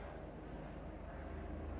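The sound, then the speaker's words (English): A helicopter drones steadily overhead, its low rotor chop pulsing in a rapid, even rhythm beneath a broad rumbling wash. The sound is fairly faint and continuous, with no voices. “Maybe you can hear the helicopter.”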